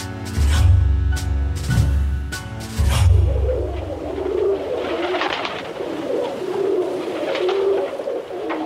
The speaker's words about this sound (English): The gravy pigeon is widely recognized beyond the shores of Gravy as the most intelligent pigeon in the bird world. Dark gray in complexion, its coo resonant, its white crest giving him a look of refined nobility.